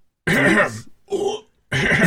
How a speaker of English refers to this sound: I want you to edit together all of my burps into, like, just a montage.